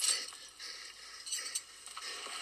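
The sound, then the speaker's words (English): A bright metallic jingle of keys, with light clinks and rattles spread across a couple of seconds as they're picked up and handled. No voices. “Oh, he's going for the keys.”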